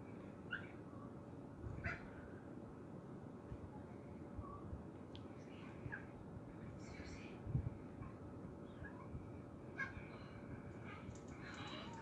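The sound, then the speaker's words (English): A dog in a film scene involving a shotgun whimpers and yips in a few short, scattered bursts over a steady, hissy background rumble, with faint muffled voices now and then. “Look, this is the scene with the dog and the shotgun.”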